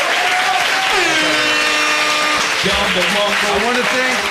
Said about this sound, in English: last but not least, one last time, please, round of applause for Fresh and Fit and being here.